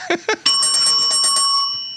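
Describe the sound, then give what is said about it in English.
A single bright bell ding strikes sharply and rings out with a long, shimmering decay, preceded by two quick vocal sounds. “Garbage bell.”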